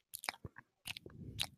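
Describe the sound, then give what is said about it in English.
Wet lip smacking for ASMR, a quick run of sharp, sticky mouth clicks and pops, followed by a denser, softer stretch of smacking against a low rustle. “If you want to hear some lip smacking”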